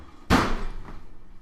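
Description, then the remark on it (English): A single loud slam of something being shut hard, with a sharp impact and a brief rumbling decay afterward. No one speaks. “Quit slamming stuff.”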